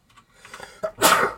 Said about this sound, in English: Bless you. Bless him again, even though he's on mute.